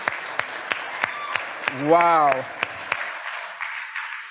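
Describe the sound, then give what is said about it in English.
An audience claps in a steady, brisk rhythm for two couples married 60 plus years, sharp individual claps standing out over a softer wash of applause, while a voice briefly exclaims partway through. “We got to clap for that.”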